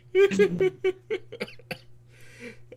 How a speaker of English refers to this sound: What the hell is that? I was coughing. He was copping? Coughing, damn it.